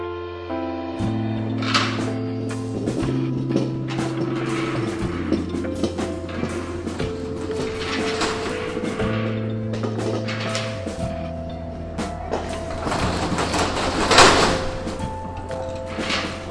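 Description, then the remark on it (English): Shop doors slide and clatter shut several times as shops close for the day, against a steady, droning mechanical hum, with a louder rattling burst near the end; no one speaks. “The doors are closing up for the other day.”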